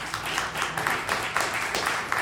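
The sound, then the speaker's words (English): An audience claps steadily for a couple of seconds, a dense, even patter of many hands with a few sharper bursts, fairly loud with no voices over it. “And you're clapping because you watch it happen.”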